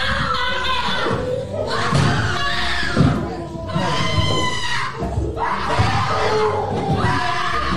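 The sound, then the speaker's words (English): Two people scream and wail loudly and continuously in a courtroom after being sentenced to life in prison, having collapsed onto the ground, one voice shrill and piercing, another high and drawn-out, with thuds and a murmuring crowd. “One is screaming very loud. The other sounds like a ghost.”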